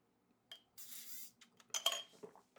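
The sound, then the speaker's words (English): Juice sipped through a big straw: a faint, airy sucking hiss, followed by a few short, gurgling slurps. No one speaks. “Sorry, I was taking a sip from my juice in my straw, and it's a big ass straw.”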